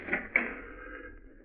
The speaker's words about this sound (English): Wait, I'll open the door.